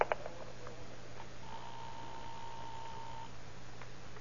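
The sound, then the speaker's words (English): A telephone being dialed as a man calls a woman to invite her to a ball game: a few sharp clicks, then a steady electronic tone that holds for about two seconds before cutting off, over a faint low hum with no voices. “Call her on the phone. Find out if she'll go.”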